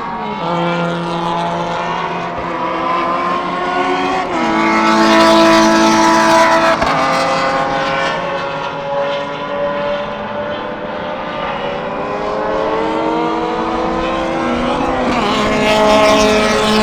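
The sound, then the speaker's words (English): Loud, continuous engine roar with whining pitches that rise and fall as racing cars speed past one after another at the end of a race, after the checkered flag, filling the whole stretch with no voices. “I can't tell who's driving which car anymore.”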